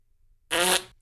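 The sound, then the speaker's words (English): A loud, buzzy fart noise with a rough, vibrating tone lasts about a third of a second, then trails off, followed by a brief, fainter puff. No one talks over it. “Sorry, that was my ass.”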